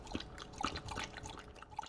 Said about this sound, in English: she sent the sound of her dog Roxy drinking water